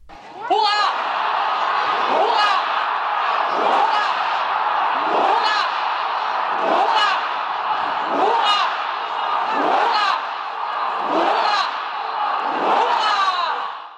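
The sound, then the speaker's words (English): A large crowd in Denmark, led by Miss Frederiksen, shouts a ninefold salute for His Majesty King Frederik: nine loud, rhythmic hurrahs in unison, each cheer rising sharply and spaced evenly about a second and a half apart over a steady background roar. “Miss Frederiksen then led the crowd in a ninefold salute for His Majesty the King.”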